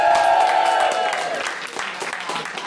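crowd, audience applause and cheering

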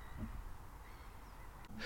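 bird, seagulls calling

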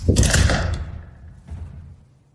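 sound effect, door slamming shut

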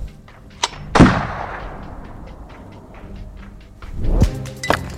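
impact, gunshot

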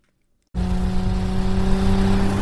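vehicle, car engine revving

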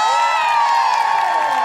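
crowd, audience applause and cheering

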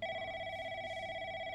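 household object, telephone ringing

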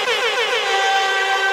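signal or alarm, buzzer going off

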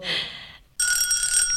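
signal or alarm, bells ringing

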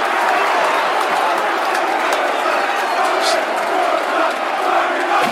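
crowd, stadium crowd roaring

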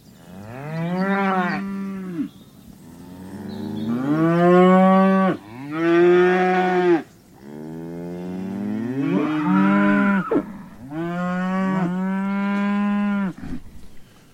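animal, cattle mooing

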